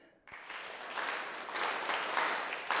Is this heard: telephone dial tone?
no